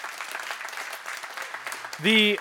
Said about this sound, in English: And amen, you can clap as much as you want, okay?